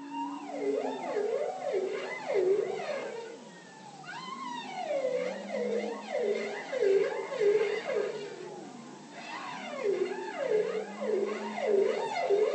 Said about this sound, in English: And you'll hear the songs of bowhead whales.